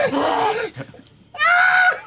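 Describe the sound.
A voice imitating a creature whose legs have just been cut off at the ankles lets out two loud, strained screams of pain, the first wavering and falling, then a brief pause before a higher, sustained shriek.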